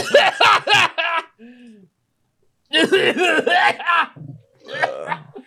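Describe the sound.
Several loud coughs come in quick clusters, with a brief pause between fits, the hacking bursts sounding raspy and voiced, coming from the back of a store.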